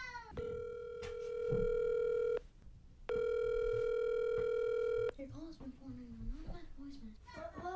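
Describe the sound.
The dialing tone of a drop-in call to a kitchen Alexa sounds twice, each a steady, buzzy two-second tone separated by a short pause, followed by a voice speaking.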